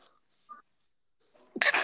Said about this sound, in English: Bless you. And bless you again.